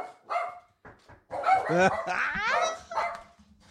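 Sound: dogs barking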